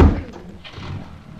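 A car door slams shut with a single heavy, low thud, followed by a brief muffled rumble and faint shuffling as the sound dies away.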